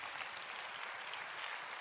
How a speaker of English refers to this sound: Clap your hands for Jesus.